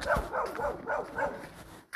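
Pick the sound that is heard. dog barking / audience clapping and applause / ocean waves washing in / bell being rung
dog barking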